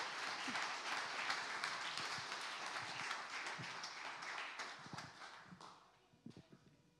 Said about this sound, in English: But let's give a round of applause and thank her for sharing this morning.